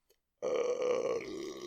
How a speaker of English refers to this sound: Oh, my God. I got to burp some more.